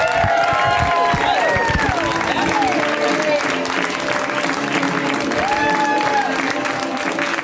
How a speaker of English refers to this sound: Keep keep it going. We have another comedian. I want you to keep clapping over me talking.